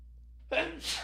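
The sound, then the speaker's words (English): A single sneeze breaks a brief silence: a quick voiced intake of breath, then a sharp, hissing burst of air. “Oh, I'm going to sneeze.”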